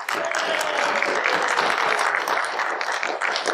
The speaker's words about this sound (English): And it's entitled, I want to hear a big round of applause, and it's The Last Man on Earth. big round of applause for the great Vincent Price.